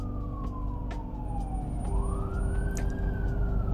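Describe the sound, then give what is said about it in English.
An ambulance siren wails outside, its pitch sliding down and then rising again in a long sweeping tone over low traffic rumble, steady in loudness. “I don't know if y'all hear that ambulance.”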